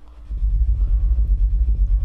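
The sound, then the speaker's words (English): Very deep bass tones at Berghain, captured on a recorder, kick in after a brief moment and throb steadily, a loud, low rumbling pulse with little above it and no voices. “I don't know how well this recorder will take the super deep bassy tones, but let's see.”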